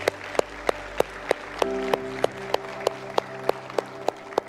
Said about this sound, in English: Come on, let's give God a round of applause.